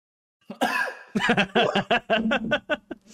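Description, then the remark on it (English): A loud coughing fit from someone who has COVID: one harsh opening cough, a brief pause, then a rapid string of rough, throaty coughs in quick succession, with no one speaking. “That's you a cough from my COVID.”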